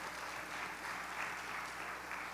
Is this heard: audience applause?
yes